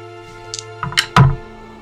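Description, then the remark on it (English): Four six-sided dice, rolled for making a soup, tumble and clatter across a hard surface in a quick burst of small knocks, ending in one louder thunk, over a steady low background hum with no talking. “If you want to roll for the soup, you can.”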